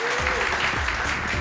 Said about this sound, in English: Thank you all so much. That's the first half of the show. So thank you all for your contributions. That was amazing. Can I have a big round of applause for my guests, please?